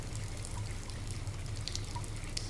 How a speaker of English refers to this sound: The water's still running. It's kind of soothing, actually.